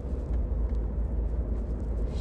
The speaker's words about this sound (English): Shit. Who got a fucking tour bus out here?